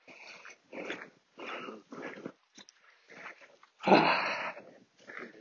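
A dog pants and snuffles in short, breathy bursts, with a louder huffing sniff near the end and brief quiet gaps between the rhythmic breaths, while out on a walk on its lead by a field.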